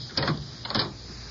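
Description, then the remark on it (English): A door opens, with two short scraping clunks about half a second apart as the latch releases and the door swings, followed by a low hum. “I can let myself in, but I'd rather you open the door. Come on, open the door.”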